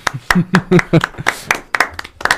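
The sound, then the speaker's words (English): A few people clap in loose, uneven bursts: a dozen or so sharp, bright smacks over a couple of seconds, with voices murmuring and vocalizing underneath. “We're clapping at her, not with her.”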